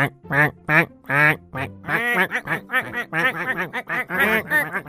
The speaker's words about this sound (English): Soon a whole flock of ducks had gathered in the tree around them.